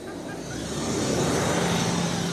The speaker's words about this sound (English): Bus is crossing. Yeah. In terms of Jerusalem, it's a very crowded street here.